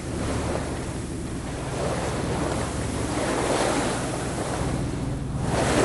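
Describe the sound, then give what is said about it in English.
Steady roar of open-ocean waves at sea, level with the end of Madagascar, with constant wind buffeting the microphone, a broad, continuous rush that swells and eases slightly, no voices present. “We're in the open ocean. We literally now are parallel with the end of Madagascar. It's always good to be at sea.”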